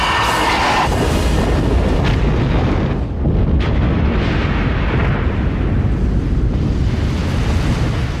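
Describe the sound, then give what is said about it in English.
A massive cinematic film explosion of a Russian submarine hit by a torpedo and blowing up: a sharp, bright burst at the start gives way to a loud, sustained roaring rumble that fills the whole clip with no voices. “So we get this big explosion.”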